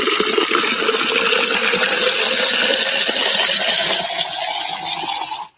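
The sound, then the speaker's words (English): Water pours steadily into a narrow tube for several seconds, a loud gushing splash whose hollow tone climbs in pitch as it fills, then stops abruptly. “So here's the tube. I'm gonna fill it up with water.”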